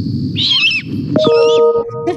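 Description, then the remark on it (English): Two raspy, screechy calls from a baby great horned owl, one after another with a short pause between, loud over a low rumbling background. “And the great horned owl is one of those. Wow. That is very early. So little baby owl.”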